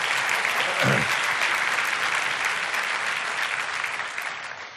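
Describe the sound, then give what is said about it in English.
A crowd in Goldsboro claps for two singers who played keyboard and guitar, in dense, sustained applause that stays loud for several seconds before slowly easing off, with a brief cheer-like swell near the start. “Can we just give it up for Nicole and Tiffany?”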